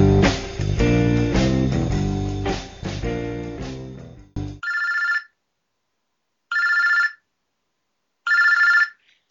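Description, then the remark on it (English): A brief burst of music cuts off, followed by three evenly spaced electronic telephone rings, each about half a second long with pauses of silence between them, before voicemail picks up. “this is Adam's voicemail. Sorry I can't get to the phone right now”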